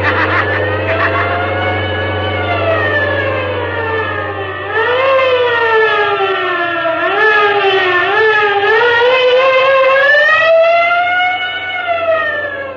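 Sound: police car sirens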